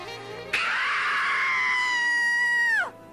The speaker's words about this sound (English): when you call 1-899-O-… and ask for me on the scream line, I'll scream like this